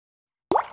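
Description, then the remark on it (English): After a stretch of silence, a drink aged in two separate barrels begins pouring into a football glass with a sudden wet plop and a brief bubbly splash that tapers off. No one speaks. “Let's see if I can get the pour.”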